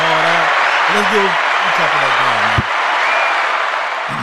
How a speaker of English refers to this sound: I'm gonna give you a quick little applause right here for that.